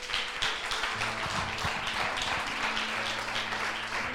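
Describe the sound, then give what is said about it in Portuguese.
A church audience applauds the Lord Jesus during a service, a steady, dense wash of many hands clapping that holds at an even loudness for about four seconds, with a faint low tonal hum underneath. “Aplauda o Senhor Jesus.”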